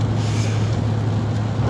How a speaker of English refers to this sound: Oh, here comes a car driving on the wrong side of the road. That's fun.